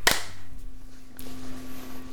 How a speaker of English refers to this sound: I forgot to clap twice on that last one. For some reason, I just went, clap, done, okay, right.